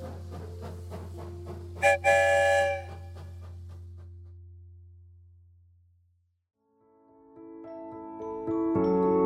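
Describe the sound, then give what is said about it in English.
A loud train whistle blows three times in long, droning blasts with a brighter shriek early on, fades into near silence, then sounds again toward the end. No one speaks. “Three Whistles.”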